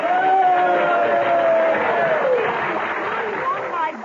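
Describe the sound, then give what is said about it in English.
A crowd applauds and cheers in a steady, loud wash of clapping for about four seconds as Senator-elect Kathleen Hughes is presented after an election win, with a voice rising above the noise early on and trailing off. “Your applause is heartwarming, and I am grateful.”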